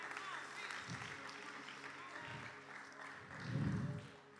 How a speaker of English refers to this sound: I didn't expect to get many hand claps with that.